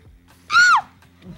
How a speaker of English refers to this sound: Just for that little scream.